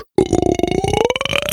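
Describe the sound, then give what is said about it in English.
A long, loud burp rolls out for over a second, its low croaking pitch rising steadily with a rapid rattling pulse, starting abruptly after a brief silence. “I'm going to have a bunch of pillows underneath me so I don't get heartburn after listening to that burp.”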